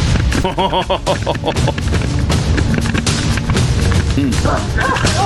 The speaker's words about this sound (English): Let's take you into a tunnel under Gaza. Okay. It's a doggy chasing down a terrorist with the IDF. All right. This is fun. He's got a camera on his back.